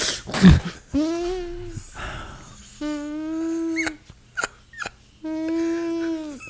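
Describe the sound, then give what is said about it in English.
Someone imitates snorting through a clogged nose: a sharp nasal snort, then three long, buzzy, whining nasal tones with brief sniffs between, fairly loud, with no talking. “Sound like you got a bee in your nose.”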